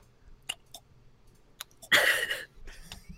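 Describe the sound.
A voice imitates the slow, absent-minded chewing of a man who spaces out while eating lunch: a few sparse, wet mouth clicks spaced apart, then a louder, half-second smacking squelch that trails into a soft low murmur.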